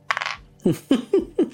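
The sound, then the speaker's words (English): A short rattle, then dice tumble across a hard tabletop in four quick, distinct clacks, fairly loud with no voices, rolled for an arts and crafts roll in a game. “Give me an arts and crafts roll, please.”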